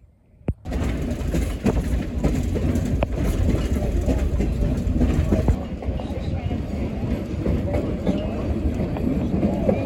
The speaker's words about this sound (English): It's been an interesting excursion on the train on my 65th birthday